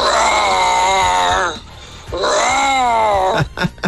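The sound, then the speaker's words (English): A person imitates a tiger with two long, drawn-out growling roars, each rising and falling in pitch, separated by a short pause and ending in a few rough breathy bursts. “We get her tiger impression.”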